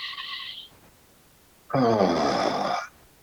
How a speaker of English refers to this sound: Take a breath in through the nose and release with an ah sound out your mouth. And again, breathe in.